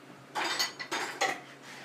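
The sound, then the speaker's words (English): A ceramic mug of hot chocolate clinks a few times amid soft sipping noises, in three short bursts over a quiet background with no talking. “Well, I gotta drink my chocolate at the appropriate time.”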